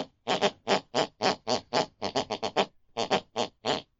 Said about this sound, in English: with the sound of my elderly mother snoring distantly from the room next door